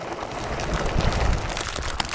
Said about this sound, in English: And we slid in an abrupt, dusty stop under Wilson's sign.